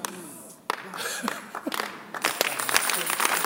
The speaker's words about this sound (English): The way you are clapping like you are hungry.